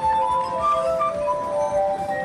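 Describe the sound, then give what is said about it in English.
A glass rim rubbed with water is played as a song, ringing out in a steady, sustained tone with bright overtones, the pitch wavering slightly as it holds for a couple of seconds, with no talking. “The ring lasts a while.”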